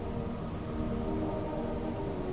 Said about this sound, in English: Great rain came out of the sea, And it seemed that all things wept for Theoden